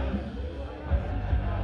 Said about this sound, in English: All right, so they just gave the announcement that this thing is about over. The crowd is singing in full throat because many of them are hammered.